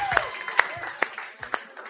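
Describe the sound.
A handful of sharp, scattered hand claps, roughly one every half second, over a low murmur of voices. It's thin, sparse clapping rather than full applause.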